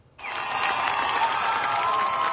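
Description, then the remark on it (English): A large crowd of protesters roars in the streets during the protests in Iran that began September 16, 2022, after the death of Mahsa Jina Amini in police custody: a dense, steady wash of many voices shouting and cheering that starts abruptly and stays loud throughout, with no single voice standing out. “Nigar Moshe Hedi now with a story of anger and defiance that drew big crowds to the streets.”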